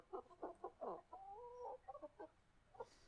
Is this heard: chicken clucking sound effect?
yes